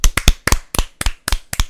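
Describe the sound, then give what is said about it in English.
A brief burst of loud, sharp hand claps, about a dozen in under two seconds, slightly uneven in rhythm as if from a few people clapping together, with no talking. “Actually, clap if she should suffer.”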